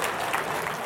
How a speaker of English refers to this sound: Who started the clap? That took a lot of courage.